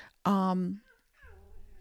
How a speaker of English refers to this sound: Sorry, I've got a cat here who's caught on my lap and she's mad and she's not happy. Hold on a minute. You're stuck, honey. There you go. Okay. She was a stray cat and she decided to go on my lap, and sometimes she just gets really scared.